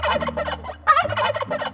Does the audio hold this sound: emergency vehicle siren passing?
no